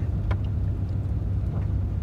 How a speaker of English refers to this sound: It's not even daybreak, so I'm going to take it slow down the driveway and read under the light of the truck.